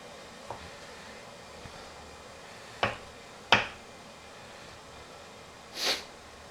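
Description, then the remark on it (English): A sharp knife chops about 2.5 pounds of chicken breast into small pieces on a cutting board for chicken paprikash, in a few sharp, irregular thwacks, two of them loud, with fainter taps between, over a low steady background hum. “Chopping up chicken breast, sharp knife.”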